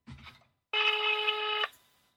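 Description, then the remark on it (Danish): A brief muffled sound, then a single steady electronic telephone tone about a second long, loud, cutting off sharply, as someone places a call to a man once again. “Nu ringer jeg lige et par gange til mere til ham for at irritere ham.”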